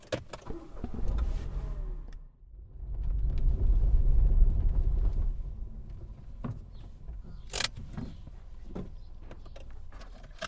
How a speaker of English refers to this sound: It's been so hot, time to fire up the car.